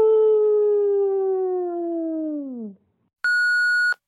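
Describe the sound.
A caller's voice imitates a wolf howl: one long, sustained note that slowly sinks in pitch before dropping off, followed after a short pause by a brief, steady, high electronic beep.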